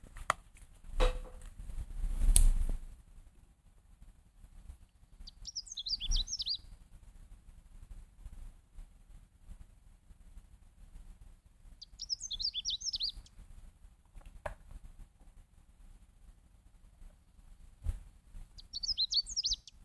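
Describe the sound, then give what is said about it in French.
A Canada warbler sings three brief, high, jumbled bursts of song spaced several seconds apart, with a few sharp knocks and thumps scattered between them and no talking. “Regardez, c'est la paruline du Canada.”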